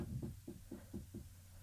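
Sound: knock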